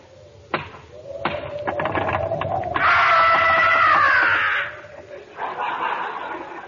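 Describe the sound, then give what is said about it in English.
A few sharp, hollow knocks on a door in the dark, spaced irregularly, followed by a loud, drawn-out wavering high-pitched wail over a steady low tone. “Knock on the door, Rochester.”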